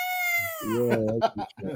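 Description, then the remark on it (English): A voice imitates the hype scream wrestler Dylan Boogs did during his NXT matches: a loud, high-pitched wail sliding downward for about a second, then breaking into lower, rough, choppy vocal bursts. “Remember during the matches he would do that hype scream that”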